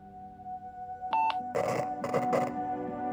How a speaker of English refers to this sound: Hear that? Nothing but static.